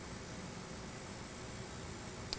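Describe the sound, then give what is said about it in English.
An air conditioner buzzes steadily in the background, a faint, unchanging wash of noise with no voices, broken only by a tiny click near the end. “Buzzing is probably my air conditioning, and if I don't have that on, then I know my cameras are going to overheat.”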